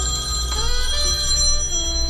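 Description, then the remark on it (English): A telephone rings with a steady, bright electronic trill, sustained and fairly loud for the whole stretch, with no voices over it. “That's the bat phone.”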